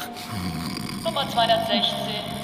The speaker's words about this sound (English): stop snoring.